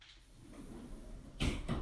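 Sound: doors being shut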